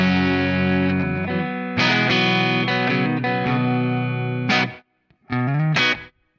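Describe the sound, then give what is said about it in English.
A distorted electric guitar plays through the player's amp model, loud sustained chords with a thick, saturated amp tone, shifting through several chord changes before a brief silence and a final burst of chords. “So that's my amp.”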